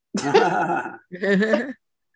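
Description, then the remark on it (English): A cat meows twice, a long drawn-out yowl followed by a slightly shorter one after a brief pause, both loud and clear with no talking over them. “My cat has an opinion.”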